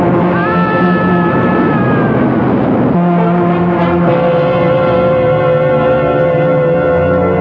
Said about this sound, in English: met his death when he inexplicably ran in front of a southbound express at the Mount Kisco station.